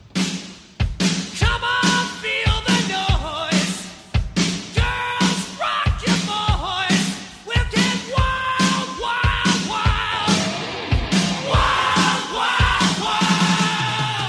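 A loud hard rock song from a GTA game soundtrack plays throughout, driven by a heavy, steady drum beat under dense distorted guitars and shouted, chant-like vocals.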